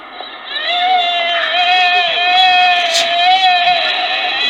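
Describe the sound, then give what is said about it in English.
A recorded deer call played in Audacity: a single drawn-out, loud reedy bleat that holds a steady pitch with slight wavers for about four seconds, with no talking over it. “So that's a deer.”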